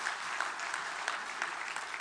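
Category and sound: crowd, audience applause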